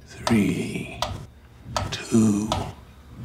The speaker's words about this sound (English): Close your eyes. Listen to the ticking.